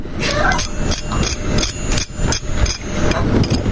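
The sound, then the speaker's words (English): Loud, crisp crunching from biting into food cooked in an oven's air fryer, a series of sharp irregular crackles repeating over a steady low rumble, with no talking. “I love my June, but this has a better air fryer by far. So you can hear the crunch.”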